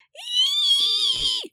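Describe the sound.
A single high, sustained wailing shriek from a human voice imitating a banshee, loud, holding steady for over a second before cutting off abruptly.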